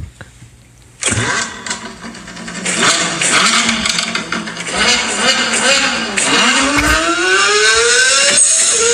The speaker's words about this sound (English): But it's like a sound of like a fucking drag racing car fucking out of the speakers.